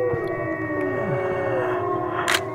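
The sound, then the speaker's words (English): Several people, heads leaned back and mouths open, hold long, wavering howls that overlap and slide in pitch, imitating wolves to try to get wolves to howl back, steady and fairly loud with no talking, and a brief hissy burst near the end. “And they said, you lean your head back and you open your mouth and then you howl.”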